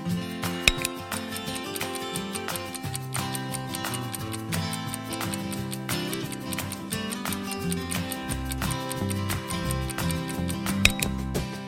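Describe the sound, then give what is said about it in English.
A countdown clock ticks steadily at an even pace over a sustained, tense musical bed, timing the answer to a quiz question. The ticks stay clear for the whole stretch, with no one speaking. “Time is ticking.”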